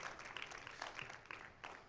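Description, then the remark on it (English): A church audience gives the Lord a round of applause after a band plays, clapping steadily in a dense, continuous patter of many hands, fairly soft overall with a few louder bursts, and no voices standing out. “Give the Lord a round of applause this morning.”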